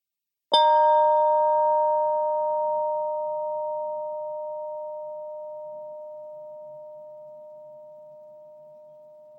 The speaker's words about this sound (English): You may want to close your eyes so that you can really hear the chime sound until it's totally gone. No talking, so we can hear the chime ring its full tone. Here it is.